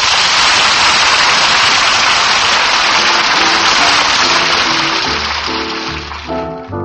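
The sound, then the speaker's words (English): A steady, even hiss of a light spring rain shower fills the whole clip, with soft musical notes creeping in underneath during the last few seconds as the rain eases slightly. “Say, fellas, let's kick up a light spring shower, shall we?”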